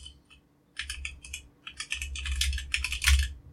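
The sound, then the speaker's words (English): Rapid keyboard typing, fairly loud, as someone searches eBay for a PlayStation 4 with PT on it, in irregular bursts of clicking keystrokes with a short pause early on, then a dense steady flurry of key presses. No voices. “Yeah, it would really be helpful if I was typing.”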